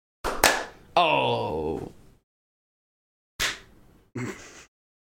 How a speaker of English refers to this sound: All right. When do we close our eyes? When we close our eyes, that's when you can begin clapping.